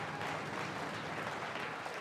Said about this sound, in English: Hey, I think you give a round of applause to those people. They're having fun and they can prove it.